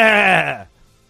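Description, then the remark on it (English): A single short, loud bleat from a human voice imitating a sheep, a harmonic 'baa' that slides downward in pitch and cuts off after about half a second, followed by near silence. “But the people that fall for this shit think we're the sheep. Bah!”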